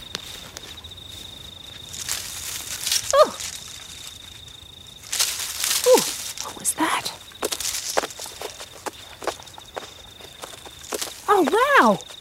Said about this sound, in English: Can you hear the leaves crunching under my feet? Crunch, crunch, crunch, crunch, crunch.